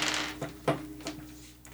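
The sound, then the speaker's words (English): Five dice rattle and clack on a tabletop, rolled as constitution saves in a tabletop role-playing game, quick, sharp taps spaced unevenly over a couple of seconds, fairly quiet against a low steady hum, with no one speaking. “Okay, roll 5 constitution saves.”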